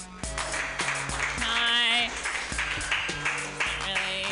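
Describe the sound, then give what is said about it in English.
Steady audience applause welcoming the first comedian of a comedy show, a dense, even hiss of many hands clapping, runs throughout, mixed with loud tonal music with stepping notes and a brief wavering high melody in the middle. “If you guys don't clap hard, I will beat you up. Put your hands together.”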